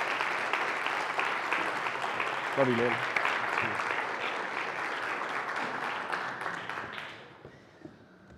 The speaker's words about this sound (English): Give my brother a round of applause, please.